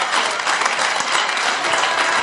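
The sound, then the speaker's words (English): An audience claps steadily, a dense, continuous wash of many hands at a fairly loud, even level with no individual claps standing out and no voices over it. “Because is it brothers who are clapping?”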